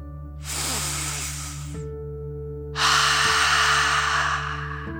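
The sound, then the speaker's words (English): A slow, airy breath drawn in through the nose, a short pause, then a longer and louder breathy exhale out through the mouth, a deep relaxing breath, over a steady low hum with no talking. “Deep breath, in and out.”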